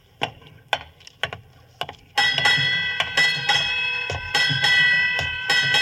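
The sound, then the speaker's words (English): A ship's bell strikes eight bells at midnight on New Year's Eve, the first few strikes sharp, clear, dry and separate, then the rest ringing together in a sustained metallic shimmer. No voices. “Eight bells.”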